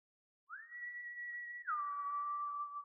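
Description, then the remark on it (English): A man on a street whistles a long two-note call, rising quickly to a sustained high tone, then dropping to a lower held note. The whistle is clear and steady, with no other sounds or talking. “He whistles again.”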